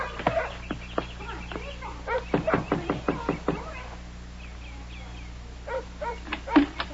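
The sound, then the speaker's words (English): Sharp raps on a trailer door in two quick bursts, a few knocks and then a longer run of about six, with faint animal-like calls in the background and no talking. “You just knock and my mama will come.”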